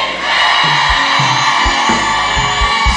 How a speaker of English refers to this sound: In Jesus' name I have prayed. And everybody screamed, Amen. Amen.